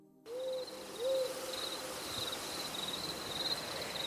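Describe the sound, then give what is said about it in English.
An owl gives two low, clear hoots about a second apart over a steady high-pitched insect trill that continues after the hoots stop. “I just heard one who, I later in the night read that an owl is the eyes for the walkers, which is very interesting.”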